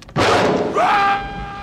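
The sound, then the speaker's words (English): A woman flips a mirror over and slams it hard into a man's head: one sudden, loud impact with a crunching burst of noise, then a brief ringing tone that fades. No one speaks. “I love when she flips that mirror over and slams him in the head.”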